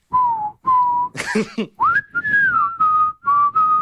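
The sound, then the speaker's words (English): A clear whistled melody of several held notes from a song, sliding up into a higher phrase and gliding between pitches, with a brief breathy rush partway through and no talking. “Such a good whistle. I love that song.”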